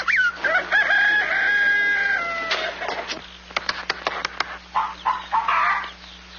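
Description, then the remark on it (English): A rooster crows in a long drawn-out call, followed by a flurry of short, sharp clucks and a few more squawking hen calls, fairly loud with no talking. “I'm going to tap every one of those hens till I find the one that lays the golden egg.”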